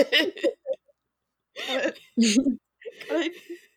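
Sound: imitated coughing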